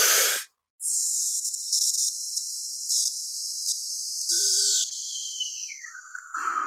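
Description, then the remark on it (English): In a breathing exercise, after a quick inhale, a long, steady hissed "sss" is held for several seconds, its bright tone shifting and gliding lower toward the end, with no talking. “I'm still changing the tone of the S as I'm doing it.”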